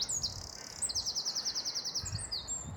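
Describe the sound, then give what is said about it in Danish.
A European robin sings on its own by a lake on a sunny day. High, thin notes open with a short phrase, then break into a rapid, even run of repeated chirps lasting about two seconds. “Det må så være den fætter røde kælk.”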